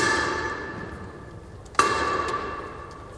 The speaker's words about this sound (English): an endless queue of random citizenry shuffling silently, curiously, and decorously past the unifying totem of their diverse tribe, the hush interrupted only by the clanking and stomping occasioned by the changing of the guard.